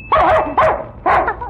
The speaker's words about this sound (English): Every time he hears the bell, he knows that he's going to get candy. And he barks till he gets it.